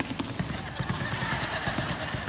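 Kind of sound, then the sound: sound effect, horses galloping hooves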